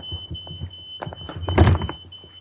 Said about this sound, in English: Wait, hang on a minute, my fire alarm is going off. Bear me 2 seconds.